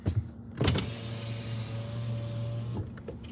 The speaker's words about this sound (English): Roll the window down. No thanks. Driving a truck. No. Let's hear the storm.